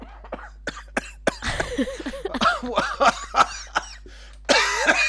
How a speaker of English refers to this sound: Oh, he no, almost made it through the whole recording. I'm having a coughing fit.